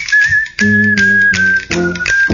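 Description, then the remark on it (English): A bright whistled theme tune carries a jaunty melody over bouncy backing music, loud, with the whistle holding long notes across a few rhythmic phrases. “Yeah, that's the Harlem Globetrotters.”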